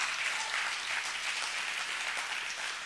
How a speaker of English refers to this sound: Y'all clapping weak. I'm preaching strong. Y'all clapping weak.